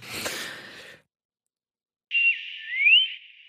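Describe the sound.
A person whistles through puckered lips a short, warbling burst of chirpy tones with quick rising and falling sweeps, imitating robot droid beeps, after a brief breathy noise and a moment of silence.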